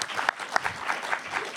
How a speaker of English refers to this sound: Can we give a little round of applause for these guys for getting up so early? Yes.